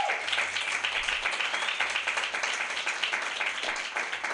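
A crowd applauds steadily, a dense wash of many hands clapping at a constant level for the whole stretch, with cheers and whoops rising faintly through it.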